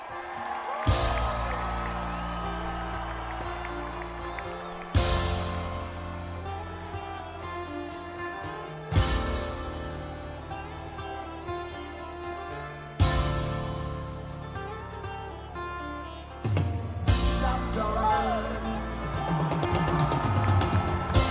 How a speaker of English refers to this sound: the crowd absolutely erupts. You're going to listen to it right now.